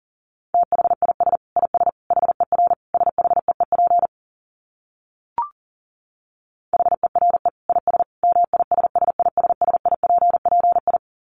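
Rapid Morse code tones at about 40 words per minute, a steady mid-pitched beep keyed in quick dits and dahs, broken by a pause with a single faint click before the fast keying resumes.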